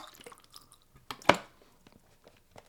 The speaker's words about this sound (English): Hey, I'm going to do a little classic. This is OG Office Podcasters know this one. You know this one? I'm going to have a sip to that.